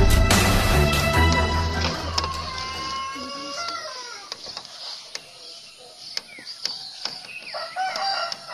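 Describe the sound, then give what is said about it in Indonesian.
A rooster lets out one long, loud crow that stretches and falls over about three seconds, followed by scattered sharp clicks and taps against a quiet background. “Tapi dia tidak akan bisa mengalahkan ayam jantan peliharaanku.”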